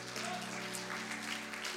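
An audience claps their hands unto the Lord in a dense, steady wash of applause, with a sustained musical tone humming underneath throughout.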